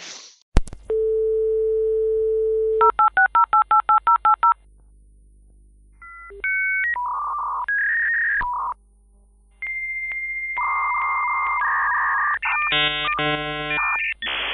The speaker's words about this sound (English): So let me, I will punch in Kelsey's super secret Zoom ID in my AOL modem counterpart. You've got mail thing here.